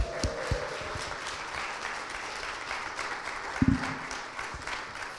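A church audience applauds steadily with a dense wash of many hands clapping at once, a few sharper claps and a brief whoop or shout rising out of the sustained ovation.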